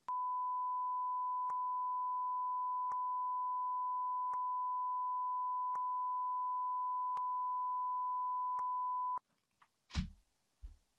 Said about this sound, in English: Beep this, Johnny.